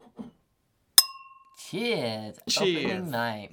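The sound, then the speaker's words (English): A single bright clink of glasses in a toast on opening night, one holding orange juice, with a clear ringing tone that fades over half a second, followed by a voice speaking. “I have prepared a glass of orange juice because I know anything else would coat your throat.”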